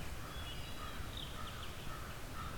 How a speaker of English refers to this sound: A lot of crows in the distance.